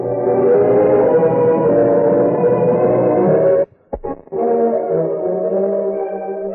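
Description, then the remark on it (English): Distant coyotes howl together just before dawn in long, wavering, overlapping cries that hold steady and loud, break off briefly midway, then resume. No one speaks. “It was just before dawn when Millie was awakened by the crying of distant coyotes.”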